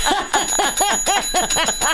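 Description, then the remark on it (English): A small bell rings rapidly over and over, about seven or eight quick, bright dings in steady succession, fairly loud with no one speaking. “Oh my God, you're going to use the bell so much.”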